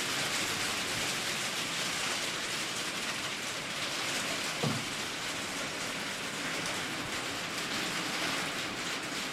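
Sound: rain falling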